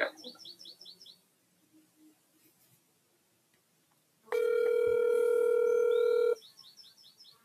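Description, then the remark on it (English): A loud, steady electronic phone call tone sounds once for about two seconds, with light bird chirping before and after it and no one talking. “Oh, phone call?”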